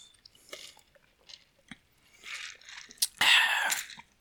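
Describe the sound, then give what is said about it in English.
Wet mouth sounds as someone sips sake: a few small clicks and smacks, then a louder slurping sip near the end, heard on its own without talking. “Let me take a sip of this sake real quick.”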